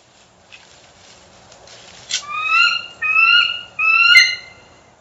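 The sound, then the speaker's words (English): A bald eagle calls three times in close succession after a quiet start, each call a shrill, ringing, slightly wavering cry, fairly loud, with no talking. “And here's a bald eagle. They'll also give like a different variation of that call that does sound a bit more majestic and powerful.”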